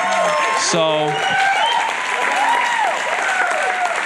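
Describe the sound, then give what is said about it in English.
Steady applause from an audience as a man makes his way up to the front, loud and continuous, with voices calling and chattering underneath the clapping. “and as he's coming, just give him a round of applause.”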